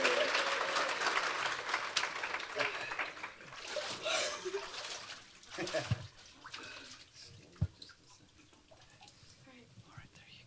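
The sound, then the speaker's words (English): Water splashes and streams off newly baptized people climbing steps, loud at first, then thinning to scattered drips and splashes, with applause and murmured voices in the background. “You wouldn't believe the amount of water that runs off these people as they go down the steps.”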